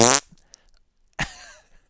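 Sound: fart sound effect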